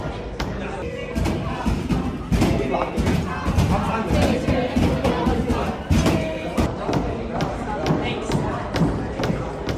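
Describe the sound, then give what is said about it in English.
A large crowd of pro-Palestinian protesters chants and shouts continuously and loudly outside a library, while sharp, irregular banging thumps from the protesters banging on the doors cut through the noise throughout. “They're chanting, the pro-Palestinian supporters.”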